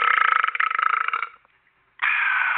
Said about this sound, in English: No, I'm still stuck on a burp on live radio. Can we please repeat that?